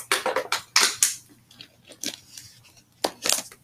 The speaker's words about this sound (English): Hold on, let me get this water in.